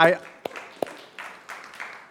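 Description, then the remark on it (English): A few sharp, scattered hand claps come at irregular intervals over a low murmur of background voices, with a brief voice at the very start. “I heard the clapping.”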